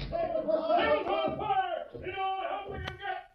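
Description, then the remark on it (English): A crowd of voices shouts "Fire!" together in sustained, overlapping bellows, rising and falling over a few seconds, with a brief sharp click near the end. “It sounded like somebody hollering. Fire! That's what they're shouting.”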